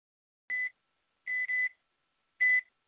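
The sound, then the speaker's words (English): An oven timer beeps in short electronic bursts: one beep, a quick double beep, then another single beep, evenly spaced, with no talking. “Start the timer.”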